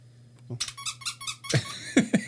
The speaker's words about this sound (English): It squeaks as well. It nearly didn't work there as well. I couldn't find it, to be honest. Find the button. You did find it in the end.